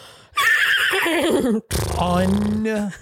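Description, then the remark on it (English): A person imitates a horse's whinny, two loud, wavering bursts with a brief pause between them, ending in a low nasal rumble like a real neigh. “That's literally exactly a horse.”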